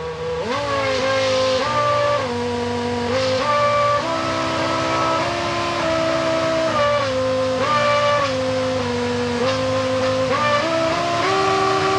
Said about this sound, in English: And also kind of a party trick that some of the Formula One teams were doing for a while was programming in songs into the engine. So the engine would change RPM and hold it there, just like you would do with a musical note.